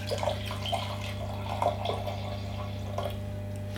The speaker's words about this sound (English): We're going to wipe that off, and we're going to pour it into the bucket.